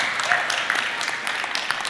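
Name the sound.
audience applauding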